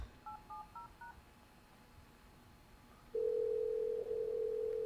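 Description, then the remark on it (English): Four quick dialing beeps from an old touch-tone phone as someone makes a phone call, in a short rhythmic run, followed by a pause and then a steady, loud dial tone that holds to the end. No one speaks. “It looks like somebody put the camera down, forgot it was recording, and then went to go make a phone call. Right. An old touch-tone phone.”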